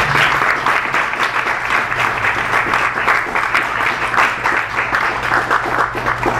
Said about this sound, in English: You all are a very appreciative audience. Very rarely do poets get the full clap at the end of the poem, so I like that.